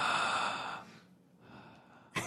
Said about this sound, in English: Why are you breathing so heavy?